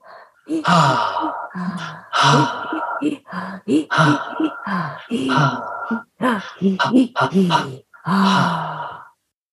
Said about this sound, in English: And I'd like to point out that there was some very interesting spelling used in those gasps there. It was very, very, we're not sure because of the spelling if those gasps rhymed in some way, but nonetheless, very powerful and very compelling.